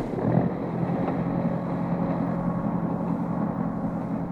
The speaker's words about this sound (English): And that's it. The train is underway from Buffalo's Halt.